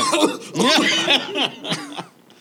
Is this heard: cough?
yes